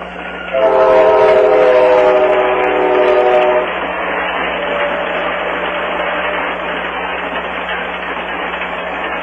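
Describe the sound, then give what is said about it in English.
An Amtrak passenger train running from Chicago to California, on time between 2 and 2:30, sounds its horn in a loud, sustained multi-tone blast for about three seconds, then keeps rumbling and clattering steadily past with no voices. “Wait until this train goes by. We'll just listen to the train.”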